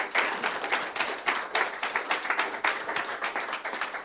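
A crowd applauds steadily at the end of a seminar, many hands clapping in a dense, continuous patter that holds at a fairly even loudness for a few seconds, with no voices standing out.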